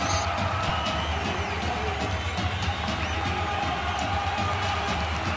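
A large crowd fills the space with a steady, dense murmur of many overlapping voices, a constant roar of chatter and faint cheering holding at an even level throughout.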